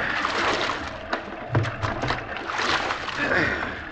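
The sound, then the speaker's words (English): Oars of a small boat at sea, rowed by two people, dip and pull through water in an uneven series of splashes and sloshing strokes over a steady wash of moving water, with faint voices underneath. “We can both do it. Take the right oar”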